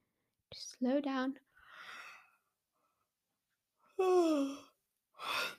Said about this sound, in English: And you know, I also realized breathing probably makes me sound like I'm bored. I'm not bored, I'm just out of breath. I need to slow down.